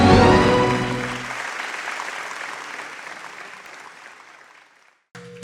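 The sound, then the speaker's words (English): An audience at a Redeemed Christian Church of God service (Throne of Grace, Richmond Hills) bursts into dense, steady clapping that starts loud with a brief tonal sound underneath, then gradually thins and fades over several seconds before a short silence and a new sound. “If you're clapping”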